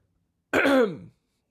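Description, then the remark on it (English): A single harsh cough lasting about half a second, loud and raspy with a falling tone, surrounded by silence and no talking. “I'm just coughing.”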